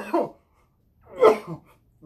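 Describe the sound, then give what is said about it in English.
A harsh coughing fit after smoking weed: two strong hacking bursts about a second apart, each followed by smaller rough coughs or throat-clearing sounds, with brief silence between. “Remember, everybody, it's not the Rona cough. It's the weed cough.”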